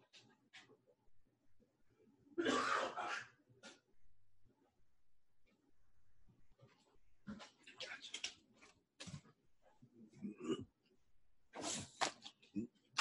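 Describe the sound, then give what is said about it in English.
A man coughs in several harsh, irregular bursts, one long fit early on and a cluster of shorter coughs later, separated by quiet breathing and faint background noise. “I done made him cough up, y'all.”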